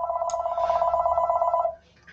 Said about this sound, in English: Forgive that phone. I'm in the office. The staff is not here at the moment.